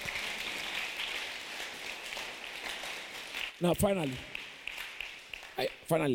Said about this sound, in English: That should make you clap for the Lord.